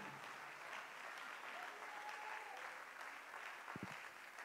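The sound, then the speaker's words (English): An audience claps their hands unto the Lord in a dense, steady wash of applause that holds at an even level throughout, with no voices standing out. “Why don't you clap your hands unto the Lord one more time?”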